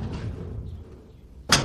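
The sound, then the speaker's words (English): A door swings shut with a single sharp thud at the very end, after a stretch of low, muffled shuffling and rumble. “Let me shut the door first.”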